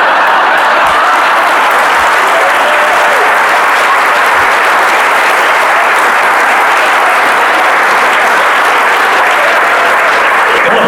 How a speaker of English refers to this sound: Don't applaud. So that's 6 seconds of applause on the broadcast.